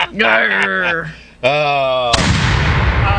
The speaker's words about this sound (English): Saturday, I spent the whole weekend underneath the cannon, changing out the boom gaskets, and now it's working again. But we got to be careful. We can't overuse it. It's an old cannon.